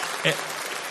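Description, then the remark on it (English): Kids clapping and cheering in a steady, dense wash of applause, with a single higher-pitched shout rising briefly out of the noise near the start. “I wanted to show you guys to show the adults what it's like to cheer and shout.”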